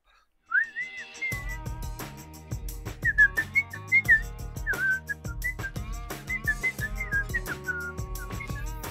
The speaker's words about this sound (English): Let me play some music and do a whistle. Wait. Let me. I gotta play a beat for you first. There we go.